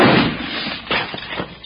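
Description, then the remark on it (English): A loud gunshot from a bushwhacker firing at people at dinner bursts out and decays, followed by several smaller sharp clanks and knocks as the bullet strikes a steak on a plate, with no voices. “No, that dad-blamed bushwhacker shot my steak.”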